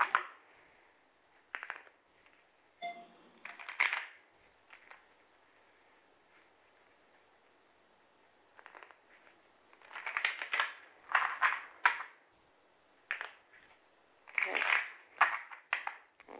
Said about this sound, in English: I'm going to just bear with me. I'm shuffling my cards, okay?